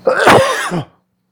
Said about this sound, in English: Excuse me, I have to cough.